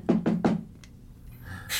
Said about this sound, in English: So we go find his door, and we knock.